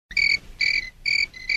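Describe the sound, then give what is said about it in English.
A cricket chirps in quick, regular pulses, four bursts of shrill trilling with brief gaps between them, fairly loud against near silence. “It's the other kind of cricket, not that.”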